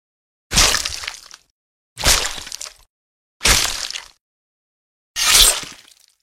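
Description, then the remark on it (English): Four loud, harsh bursts of crunching and tearing, the sound of bones crunching, flesh and muscle being torn and blood spattering, each lasting under a second and separated by brief silences, with no voices. “His cries of agony mixed with the sound of crunching bones, flesh, and muscle being torn and blood spattering.”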